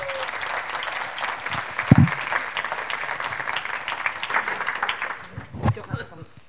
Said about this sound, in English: So they're taking a huge step of faith because they feel God's asked them to start a new church, and it's called Derwent Valley Vineyard. So let's give them a huge round of applause.